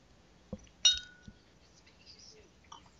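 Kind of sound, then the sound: household object, glass clinking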